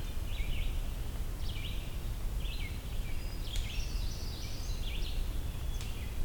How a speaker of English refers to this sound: Also sounds like there's a magnolia warbler here too.